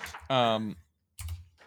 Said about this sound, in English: Oh my god, your keyboard is so fucking loud, bro. I try to be quiet. I got a new one. It's quiet.